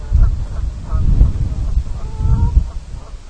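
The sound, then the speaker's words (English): A goose honks in the background, a few nasal, harmonic calls around the one- and two-second marks, set against a steady low rumble with no one speaking; many geese are flying about in the area. “However, you might just be able to hear in the background there a far more aggressive, hostile, and altogether all-round atrocious animal, the goose.”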